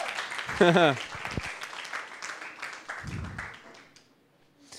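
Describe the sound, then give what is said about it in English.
An audience claps for God in a dense, steady burst of applause that gradually thins and fades toward the end, with a few voices calling out over it. “Come on, give God a big clap.”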